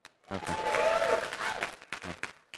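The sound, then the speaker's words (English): A short burst of audience applause with a bit of cheering at Gateway swells for about a second and a half. A man's voice speaks briefly before it and again after it dies down. “And no applause?”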